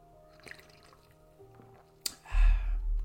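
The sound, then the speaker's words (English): Someone takes a sip of a drink: after a quiet stretch, a sharp little click, then a wet, breathy slurp and swallow lasting about a second. “Excuse me, I'm gonna grab a little sip of my beverage here.”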